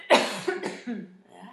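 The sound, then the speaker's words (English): A harsh cough from a sick person bursts out loudly, followed by a couple of smaller hacking coughs in quick succession, with no talking around it. “Oh, I'm gonna cough.”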